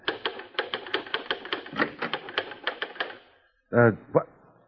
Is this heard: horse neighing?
no